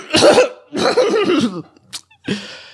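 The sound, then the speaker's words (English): A loud coughing fit from Tiny Tim, who is terribly sick: a few harsh, raspy coughs in quick succession, with brief gaps between bursts and a short sharp cough near the end, no talking. “Starts a coughing fit.”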